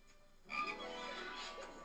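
After a brief quiet moment, a frog lets out a single drawn-out, raspy croak with a buzzy, tonal quality that holds steady at moderate volume for over a second.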